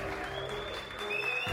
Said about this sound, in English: And I added some cheering and stuff in there because I thought it's almost like he's rallying a mob. You know what I mean? It's like a posse.